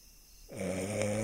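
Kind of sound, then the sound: vocal imitation, person imitating snoring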